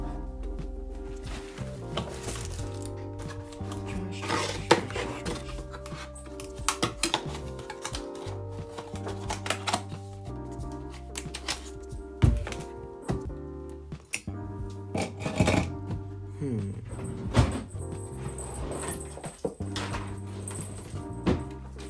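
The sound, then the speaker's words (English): Someone rummages through desk drawers: irregular clacks, knocks and rattling of small items, with occasional sharper thuds, over a steady low hum. No one speaks. “I hope you guys like these drawer sounds.”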